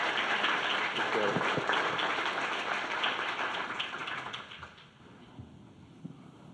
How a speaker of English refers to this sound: Can we give Jonathan a round of applause as he comes forward this morning?